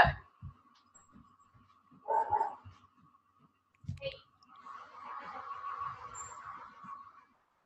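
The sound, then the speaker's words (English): A dog barks a few times in short, separated bursts at moderate volume, followed by the steadier rumbling engine of a delivery truck. “I'm going to pause you for 1 second for the dog.”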